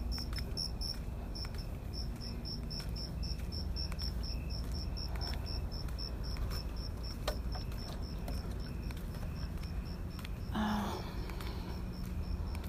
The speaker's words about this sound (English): For example, I'm gonna listen to the crickets.